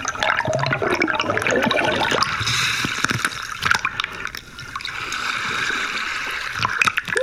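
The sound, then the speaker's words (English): Air bubbles from an air tank at the bottom of a pond gurgle up through the water and slime, a steady churning wash of bubbling with occasional sharper pops and splashes, no voices. “It's letting out a little bit of air, and it's kind of making a hole in this slime.”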